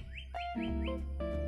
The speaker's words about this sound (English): You can listen to my beautiful birds in my backyard right now. there singing away.